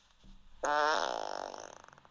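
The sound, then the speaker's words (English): A loud, drawn-out fart sound sent as a WhatsApp message, with a buzzy, rippling texture that sputters and fades over about a second and a half, played back clearly on its own with no talking. “likes to send me farts on WhatsApp”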